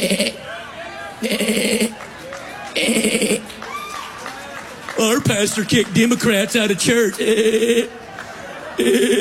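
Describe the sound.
A pastor makes loud, repeated goat-like bleating noises in short bursts, then a rapid cluster of wavering bleats, with a person talking in between.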